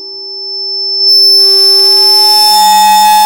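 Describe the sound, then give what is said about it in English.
A phone timer alarm sounds alone: a steady, pure electronic tone that swells in loudness, then after about a second turns brighter and fuller, holding on without pause. “It must be your phone. That's the timer.”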